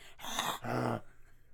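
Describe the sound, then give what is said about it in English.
Two loud, rough growls from people back to back, imitating angry bears, brief, each lasting under half a second before trailing into quiet. “We just sound like two angry bears for a split second.”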